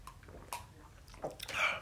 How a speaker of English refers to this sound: If you hear us sipping, we're sipping on some apple juice. It's the good shit.